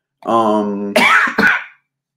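A loud throat clearing: a voiced, rasping hum followed by two sharp, harsh coughs in quick succession, with no talking.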